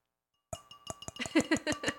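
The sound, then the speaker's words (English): Glasses clink together in a toast with Prosecco, one cup plastic and one glass: a run of sharp, bright taps with a brief ringing tone, repeating quickly for about a second and a half after a moment of silence, with no talking. “I can tell mine's plastic. Yours is glass.”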